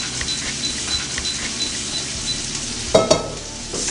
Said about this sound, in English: All right, the meatballs are almost done. This is done. I'm going to drain it, okay?